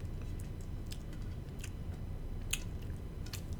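Close, wet chewing sounds with soft smacks and clicks repeating irregularly over a steady low rumble, as someone chews gum right next to the microphone, with no talking.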